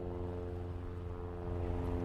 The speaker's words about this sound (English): Yeah, every now and again you have the passing plane. We still are in a metropolitan area.